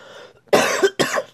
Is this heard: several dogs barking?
no